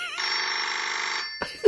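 A telephone rings once with a sustained, warbling electronic trill lasting about a second, loud, followed by a brief clatter like the receiver being picked up.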